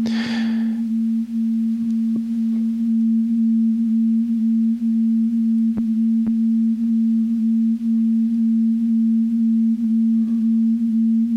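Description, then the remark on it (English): A digital synthesizer oscillator drones a single steady, pure low-mid tone at constant pitch and loudness for the whole stretch, opening with a brief hissy burst and broken by a couple of faint clicks. “So that's a nice demonstration of how lovely digital oscillators can sound and how harsh.”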